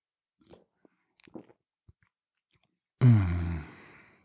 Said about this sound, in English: Just gonna sip on this big sexy beer.